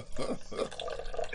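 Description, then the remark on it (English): Dr. Pepper being poured into a glass of whiskey, a short gurgling splash with bubbly trickling textures, heard alone without any talking. “Well, you do have to ask that question on this podcast, but this time around, I poured a little more Dr. Pepper into this whiskey.”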